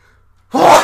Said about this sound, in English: Can you stop sneezing in the mic? My God, bro.